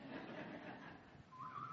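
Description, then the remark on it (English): A person at a church service whistles a Western movie theme: a short burst of whistled notes, sliding upward, rises out of a hushed, noisy background near the end, brief and fairly faint. “And when I mentioned that in the 8 o'clock service, somebody started whistling the theme.”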